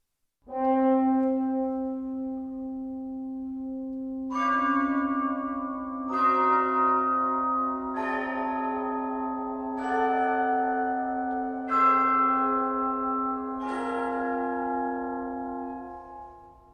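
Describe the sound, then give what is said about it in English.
Orchestral bells evoking Russian church bells chime at the end of a piece in a slow, steady series of about six resonant strikes, roughly two seconds apart, each ringing over a sustained low held tone. No voices. “And here are those bells chiming in the postludium at the end of the Requiem canticles.”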